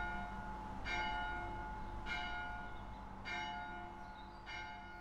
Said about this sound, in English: And in there are the two bells. One is 600 years old and one is 400 years old.